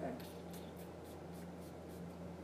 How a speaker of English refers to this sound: Should I spray it a lot or just like a couple sprays? You want to spray it a lot so that even after it airs out overnight, you can still smell it tomorrow.